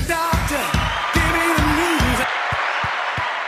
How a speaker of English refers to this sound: Got to join the studio audience in applauding you coming on.